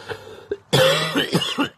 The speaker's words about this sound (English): Oh, boy. I've been coughing a bit. Sorry about that, folks.